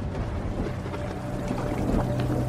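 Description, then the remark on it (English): Heavy rain pours steadily into a waiting room in a dense, continuous watery rush, fairly loud, with splashing texture throughout and no voices. “As they break the news, rain starts pouring into the room, and Ryan slowly starts to slip under the water.”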